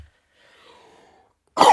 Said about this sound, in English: coughing like this today.